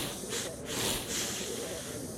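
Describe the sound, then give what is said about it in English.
Several cats hiss at once in a dense, overlapping chorus, with sharp breathy bursts rising and falling over a steady noisy background for about two seconds. “Okay, yeah, that's a lot of cats.”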